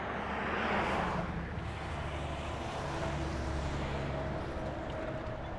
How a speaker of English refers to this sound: And there's two cars coming, and it's a semi-truck.